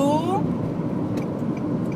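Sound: car traffic noise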